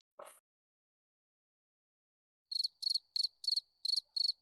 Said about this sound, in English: You can shove that cricket right up your ass.